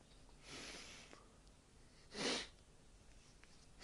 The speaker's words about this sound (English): Man, I'm sniffling so fucking much.